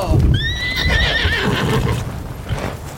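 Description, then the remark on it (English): Horses whinny with high, wavering neighs over a steady, rumbling clatter of hooves clopping as a rider calls them to stop, the calls fading after a couple of seconds while the hoofbeats continue. “All right, we better leave the horses here.”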